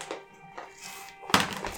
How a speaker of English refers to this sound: All right, what do you got for us, Dave? Well, Dave is going to roll a dice and see what happens, eh?